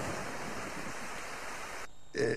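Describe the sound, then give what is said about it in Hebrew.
Heavy rain, falling in the south where it had not rained for 20 years, pours in a steady, dense hiss for nearly two seconds, then cuts off abruptly, followed by a brief, louder tonal burst at the end. “טוב, פעם ב-20 שנה באמת יש קצת גשם, אבל איך אומרים?”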